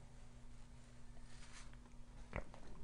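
A single quick sip of hot tea, a short wet slurp near the end, over a steady low electrical hum, otherwise quiet with no talking.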